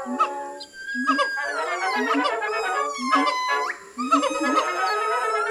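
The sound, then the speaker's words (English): A loud chorus of calls from a group of gibbons in Kasama, overlapping whoops and hoots that rise and fall in pitch, repeating in quick succession and filling the whole stretch with no talking. “We have gotten ourselves into a bit of monkey business, studying now a brigade of Gibbons monkeys.”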